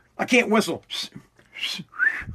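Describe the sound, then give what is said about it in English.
A man's breathy, failed attempt at a wolf whistle: several airy hisses and vocal bursts, ending in a short rising whistle-like squeak. “I can't whistle, man.”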